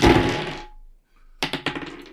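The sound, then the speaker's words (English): A brief rattling rush fades out, then after a short pause six dice clatter across a hard tabletop in a quick, uneven burst of about six sharp clicks and clacks, landing on 4, 4, 3, 3, 2 and 6. “Don't make me blush while I'm rolling.”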